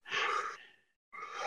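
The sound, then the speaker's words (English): Heavy breathing from a man who has just jumped into cold water in his underwear: a long, forceful exhale that trails off, a short silence, then another strong breath begins. No one speaks. “So, you know, you're in, and I see you breathing a bit.”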